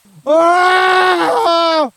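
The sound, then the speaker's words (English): A man lets out a loud, drawn-out shriek of pain lasting about a second and a half, strained and wavering, with a brief catch near the end before it trails off. “His shrieking was anything but discreet.”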